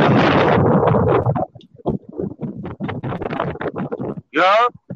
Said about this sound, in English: Yeah, it's a little windy. Yeah, I was outside. I'm about to step in, man.